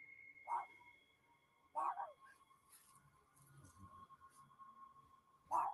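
Three short, high-pitched yaps from a chihuahua, spaced irregularly, over a faint, steady background hum.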